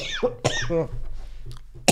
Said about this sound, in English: Why are you coughing? Oh, because I swallowed so much jizz from the shipping channel.